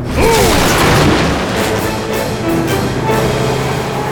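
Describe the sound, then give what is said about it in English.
A loud, sustained crash as an aluminum garage door bursts outward when the Eclair bursts out onto the street, a heavy boom with rattling, clattering metal and a rough roar that holds steady to the end, with no voices. “The aluminum door of the garage exploded outwards as the Eclair burst onto the street and turned sharply left.”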